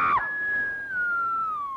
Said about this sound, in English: She stepped onto the covering and down she went with a chilling scream.